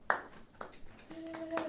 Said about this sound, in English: Okay, I clapped myself. Yeah, you gotta acknowledge you.